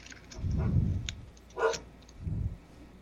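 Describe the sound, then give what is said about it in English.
A female dog makes a few short vocal sounds: a low, drawn-out whine, then a sharper bark-like yelp, then another low grumble, moderately quiet with no talking. “The dog, wasn't folks. Mine. Mine can't keep her mouth shut, man.”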